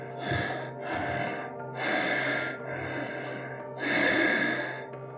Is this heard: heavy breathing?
yes